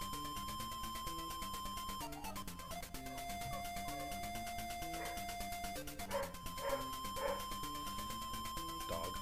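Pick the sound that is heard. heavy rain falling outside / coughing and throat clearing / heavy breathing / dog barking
dog barking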